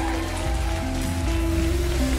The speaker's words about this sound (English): Give Jesus a great big hand clap.